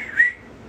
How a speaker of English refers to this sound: Just straight up whistle.